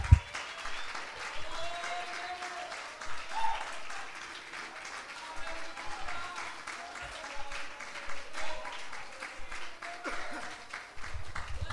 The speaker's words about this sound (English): Come on, clap your hands.